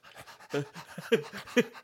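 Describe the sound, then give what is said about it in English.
A dog pants in quick, rhythmic breaths, with a couple of louder, slightly voiced huffs near the end; no one speaks. “That's a good boy.”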